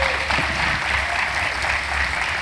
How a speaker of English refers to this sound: Let's give another round of applause for our students.